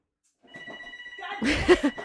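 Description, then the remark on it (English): A telephone rings with a steady electronic trill inside a car while driving, still ringing after being unplugged, then a louder burst of rustling noise and brief voice-like sounds crowds in over it toward the end. “One moment while we experience technical difficulties with the phone. Unplugged. It's still ringing.”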